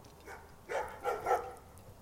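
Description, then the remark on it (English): A large dog barks a few times in quick succession, the deep woofs sounding somewhat muffled, with no one talking. “Big dog.”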